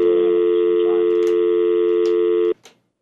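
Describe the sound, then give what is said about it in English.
A steady telephone dial tone hums loudly and evenly for about two and a half seconds, then cuts off abruptly, followed by a faint click. “Yeah, sorry, I heard a dial tone.”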